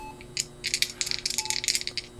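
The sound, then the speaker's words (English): Dice rattle and clatter in a quick, irregular burst of bright clicks lasting about two seconds, ending with a sharper knock, rolled for a 'That Was Me' check and coming up a 5 and a 3. No one speaks. “And I'm going to roll That Was Me.”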